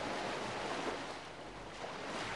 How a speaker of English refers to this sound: So I want you to imagine the sound of waves crashing in and out.